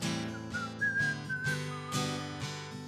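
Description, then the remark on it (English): A person whistles a short, sliding melody of sustained notes over a steady backing of instrumental music with rhythmic chords. The whistle is clear and moderately loud, sitting above the accompaniment. “Whistle solo.”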